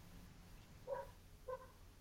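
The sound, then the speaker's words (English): A dog, Kezzy, barks twice after the doorbell rings, two short, fairly faint woofs about half a second apart, over low hum with no voices. “Is that Kezzy I can hear barking”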